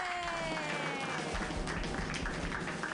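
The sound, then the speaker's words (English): A group claps steadily for about three seconds, a dense, even patter of many hands, with a few voices whooping and cheering over the applause. “Everybody clap wildly.”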